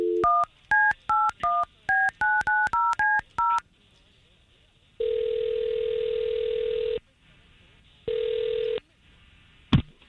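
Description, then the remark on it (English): About a dozen quick, clear telephone keypad tones beep in rapid succession as a phone number is dialed to call a man, followed by two long, steady ringback tones with a pause between them, then a sharp click. No one speaks. “this Peter, you gave us his phone number, and we're going to try to call him”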